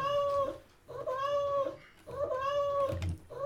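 A cat meows three times in a row, each call long, drawn-out and loud, close by, with short pauses between them and no talking.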